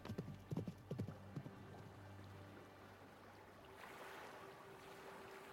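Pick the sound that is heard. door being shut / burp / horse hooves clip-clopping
horse hooves clip-clopping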